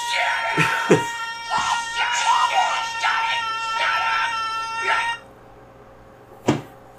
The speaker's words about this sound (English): So here he is howling because he's a degenerate furry.